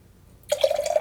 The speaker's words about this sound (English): The abrupt pour.